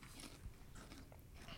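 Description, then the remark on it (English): Close-up chewing with crunchy, irregular mouth noises that continue steadily for a couple of seconds, with no talking. “Yeah, sorry for chewing on mic.”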